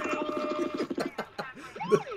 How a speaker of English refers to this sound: the sirens.